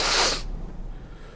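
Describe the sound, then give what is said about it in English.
A single sharp, loud nasal sniff of a powder, a short hissy rush of air lasting under half a second, followed by quiet with only a faint low hum and no talking. “Is it cocaine? Sniff it.”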